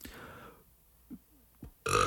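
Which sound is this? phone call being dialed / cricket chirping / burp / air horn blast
burp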